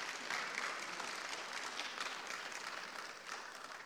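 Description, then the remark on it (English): A church audience claps together in sustained applause as praise to God, a dense, steady wash of many hands with no distinct individual claps, fading slightly toward the end. “Give God some hand clap of praise.”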